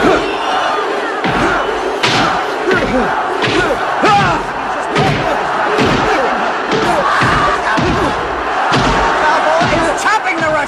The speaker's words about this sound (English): when they hit each other, it sounds like they're hitting each other with sandbags or something. In the new one, it sounds more realistic, I guess? Less cartoonish? I hate that! I want the original. Like, here's what the original sounded like.